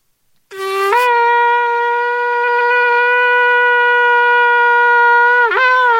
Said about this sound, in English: So we blow the shofar before we go to battle, and we blow it all day long. Let's see what it sounds like.